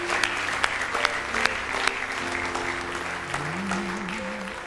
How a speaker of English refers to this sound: Oh, give the Lord a hand clap of praise here. Give Him a praise offering. Hallelujah.